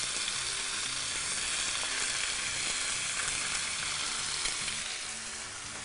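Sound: chicken sizzling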